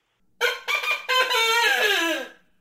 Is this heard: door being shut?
no